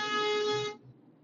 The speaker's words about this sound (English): I don't know why that guy was fucking honking at me. I didn't do nothing.